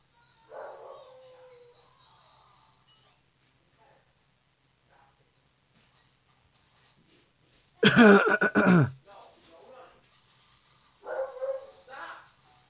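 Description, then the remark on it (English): A dog barks excitedly in a loud burst of rapid barks, with shorter yips and whines before and after against a quiet background. “That was weird. My dog just went crazy.”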